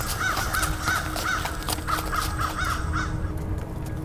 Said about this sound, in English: Scattered through the dead pumpkins and broken fence are a murder of crows.